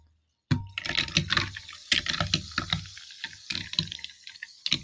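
Liquid from a newly opened bottle is poured into a glass of seltzer water after a brief silence, with uneven splashing and gurgling bursts that continue for several seconds, and no one talking.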